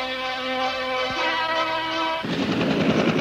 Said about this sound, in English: Pope John Paul touching down in San Francisco. The helicopter has landed.